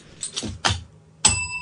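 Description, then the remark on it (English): A hand bell clinks and jangles a few times as it's picked up, then one clear strike rings out, its bright metallic tone sustaining to the end; the bell is rung for a first-time caller. “I've listened to you for about 3 years, and this is the first time I've ever called in. Get that bell out.”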